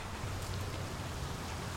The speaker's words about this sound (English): The rain is coming down now.